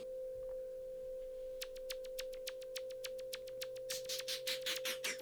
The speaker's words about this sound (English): Oh, there's that noise again. So we're into a slower tempo. Yes. I'm not sure about that particular noise he's using on the keyboard. It's a little bit too close to panpipe for me.